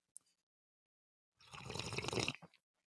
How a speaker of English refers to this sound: And join me in this sip of a welcome back cafecito.